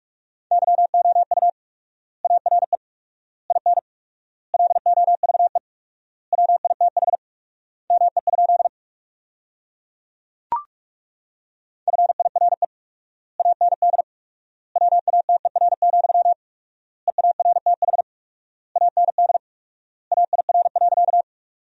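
Fast Morse code beeps sent at 45 words per minute with 4x word spacing, sentences made from the top 400 words, in a single steady mid-pitched tone, in rapid bursts of characters with long pauses between words, plus one sharp click partway through. No voices.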